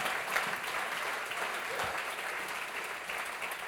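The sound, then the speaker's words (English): An audience in the sanctuary gives the Lord a great hand clap, a dense, steady burst of applause, loud and continuous throughout with no pauses, the many overlapping claps blending into a bright wash of sound. “Give the Lord a great hand clap one more time in the sanctuary.”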